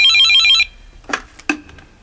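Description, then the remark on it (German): A mobile phone rings with a bright, melodic ringtone for a moment, then cuts off abruptly, followed by a couple of sharp clicks and rustling as the phone is handled. “Das waren die Kollegen von der Kriminalpolizei.”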